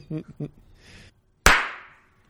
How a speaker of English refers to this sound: Beautiful. Felt very good about that clap. Now that I've started clapping right when it's supposed to turn the number, I've been right on time.